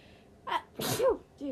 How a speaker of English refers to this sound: I just sneezed. Okay, sorry. That was probably disgusting.